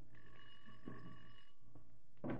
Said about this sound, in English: Ring the bell, Patsy.